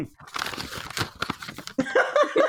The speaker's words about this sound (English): Wait, I just realized I didn't have my character sheet out. The paper crinkling is probably amazing for audio medium.